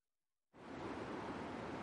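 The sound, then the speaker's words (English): Water of Payette Lake, a glacial lake high in the Idaho mountains, laps and washes steadily, a continuous soft rush that starts abruptly after a brief silence and holds at an even level, with no voices. “The water is crystal clear this high up in the Idaho mountains. Payette Lake is a glacial wonder that turned the town of McCall into a resort.”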